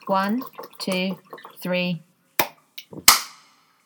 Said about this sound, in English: 1, 2, 3. I clapped. There is quite a lot of delay. Is there? How do you know? Well, because I clapped and then literally like 2 seconds later I heard your clap.